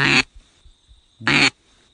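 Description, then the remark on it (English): Two short, loud, raspy quacks blown on a duck call, imitating an alarmed duck, evenly spaced about a second apart, with quiet gaps and faint low thumps between them. “One's more an alarmed duck.”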